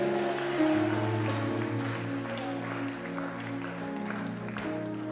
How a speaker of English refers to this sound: Come on, clap your hands and shout a big amen.